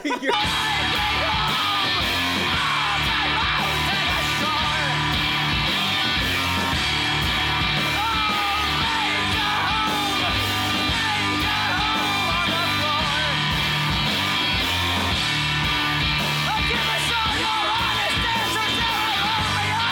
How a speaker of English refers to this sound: Now you're listening to us play Bioshock. This is a terrible idea for content.